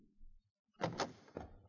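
Three knocks on the wooden door of room 319 at the Royal Albert Hotel in Dawson, fairly loud, in an uneven rhythm with a short pause before the last, after a brief low muffled rumble.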